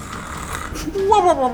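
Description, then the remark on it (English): A voice imitates exaggerated snoring: a long, rough, breathy rasp that turns into a voiced, wavering snort, rising and then sliding down in pitch, fairly loud. “Sorry, I have apnea.”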